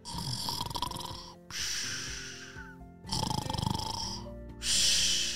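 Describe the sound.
A voice imitates Fluffy the chicken snoring after falling fast asleep: four loud, breathy snores alternating rough, rattling inhales with airy, hissing exhales, evenly paced, with no talking.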